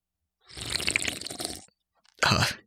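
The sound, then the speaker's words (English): A can of Hams beer is cracked open, giving a fizzing, crackling hiss for about a second, then after a short pause a single wet, slurping gulp. No one speaks. “And tonight I'm drinking a Hams because this is a Team Slurp episode.”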